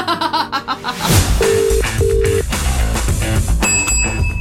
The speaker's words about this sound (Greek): ο Τάκης δεν το σηκώνει το τηλέφωνο